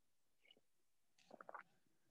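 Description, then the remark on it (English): A quiet slurping sip of cold coffee: a faint brief sound, a pause, then a cluster of quick wet gulps and mouth noises. Nobody speaks. “A sip of cold coffee will fix that.”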